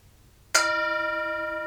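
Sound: bell being rung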